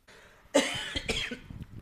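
A person coughs twice in quick succession, fairly loud, with harsh breathy bursts and a brief rasp trailing off, right as a recording starts; no one speaks.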